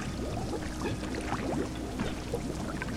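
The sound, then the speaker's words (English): Gallons of thick, piping hot tar are poured by a posse of men into a hiding place in a mine, a dense, continuous splashing and gurgling for a few seconds at moderate volume with no voices. “The posse poured gallons of piping hot tar into my hiding place.”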